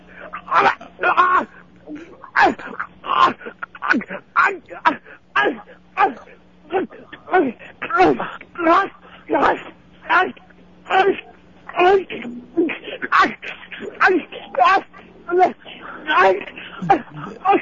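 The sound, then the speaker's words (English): A man on all fours grunts over and over about four feet from a dropped phone, heard through a tinny telephone line, short rough bursts coming in a steady, rapid rhythm over a faint electrical hum. “… is on his all fours right now. Grunting.”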